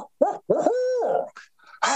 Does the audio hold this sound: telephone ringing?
no